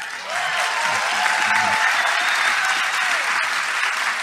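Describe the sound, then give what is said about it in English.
A crowd applauds steadily for about four seconds, a dense wash of many hands clapping at once, loud and sustained with no clear individual beats, and a faint murmur of voices beneath. “We had a deal, no clapping.”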